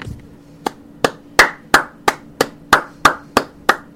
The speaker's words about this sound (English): And that is a sincere clap.